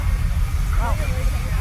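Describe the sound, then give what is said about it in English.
A tractor engine rumbles steadily with a constant hiss spread across the upper range, and a short warbling tone briefly rises above it partway through. “Especially since that one tractor is making a hissing sound.”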